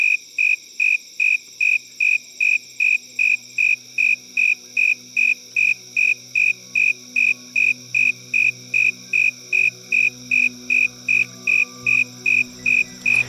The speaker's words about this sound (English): So here's 14 seconds worth of cricket chirps.